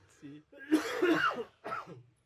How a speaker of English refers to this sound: Hang on, I've got a cough again.